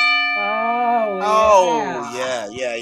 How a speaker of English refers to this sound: Before we get into it, we got to ring that bell to make it official.